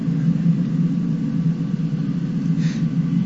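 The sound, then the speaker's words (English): A plane taking off: a steady, loud, low engine roar that holds constant throughout, with a faint higher whine surfacing briefly near the end. No voices. “Yeah, I suppose by the point it takes off, it must be reaching a good few kilometres an hour.”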